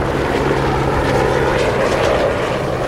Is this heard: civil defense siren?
no